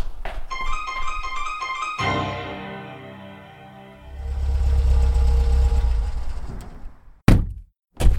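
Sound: car engine running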